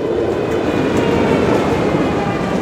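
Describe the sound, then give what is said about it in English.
A train rolls steadily along the rails, a loud, continuous rumble with a faint rhythmic clickety-clack running through it and no voices. “But I'm going across now, so do you want to take the train to rehab?”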